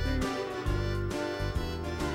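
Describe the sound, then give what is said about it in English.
A Casio electronic keyboard preset plays a cheesy, bouncy, repetitive tune with a steady bass-and-chord rhythm, loud, with thin synthetic tones and no voices. “We borrowed my brother's Casio keyboard.”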